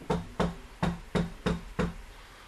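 Six firm knocks on the door of a house in a steady, quick rhythm, each a sharp thud with a short ring, with no voices.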